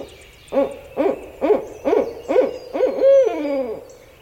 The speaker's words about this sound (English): A barred owl hoots mightily as an alligator slithers by.